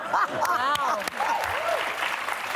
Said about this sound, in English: Wow. Yeah, I can't stand the audience. They clap at everything. They don't even know what they're clapping at.